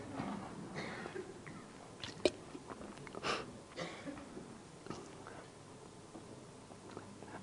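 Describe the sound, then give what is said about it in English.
Someone drinking a glass of water: a few quiet sips and swallows with small wet mouth clicks and a soft breath or sniff, faint and irregular, with no talking. “I need to have a good drink of water first because I'll get excited.”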